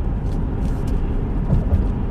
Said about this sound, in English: Why is so much traffic today?